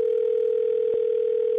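A steady, unbroken telephone dial tone hums at constant pitch and volume as a radio show places a call, clear, with one faint click partway through and no voices.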